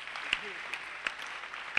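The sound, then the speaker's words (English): An audience claps in a steady, dense wash of applause. A few sharper individual claps pop out above the crackling texture at irregular moments. “You're even clapping shows that you don't believe anything.”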